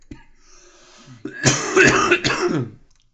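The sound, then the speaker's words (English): Someone gives a short, raspy fit of coughing and throat clearing, a few rough bursts in quick succession after a quiet moment, with no talking. “Anyway, sorry, I keep having to mute to cough.”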